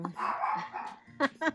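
A dog looking at the door barks twice in quick succession, loud, following a longer drawn-out vocal sound at the start.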